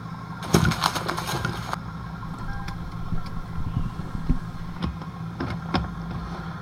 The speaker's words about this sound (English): He hears a car pulling up and goes to the garage door and opens it.